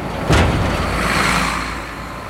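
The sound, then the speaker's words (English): Steady road traffic noise, a continuous low rumble and hiss of passing vehicles, with a louder whoosh near the start as a car goes by, then a constant wash of engine sound. “The repetitious sound of the traffic has an uncanny knack of luring you into a false sense of security before spitting you straight back out with some violent industrial thud.”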